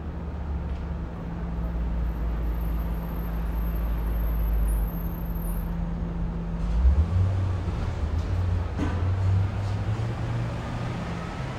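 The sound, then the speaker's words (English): A steady low engine rumble from cars driving down a quiet street making deliveries, shifting in pitch about halfway through as a vehicle moves past, with a faint hiss of background air and no voices. “Instead of lockers closing and people chatting and the marching band playing, there is a silence punctuated by cars driving down the street, making their deliveries, and leaves rustling in the wind.”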